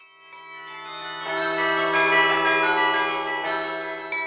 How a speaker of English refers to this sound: the English custom of ringing church bells at midnight on New Year's Eve.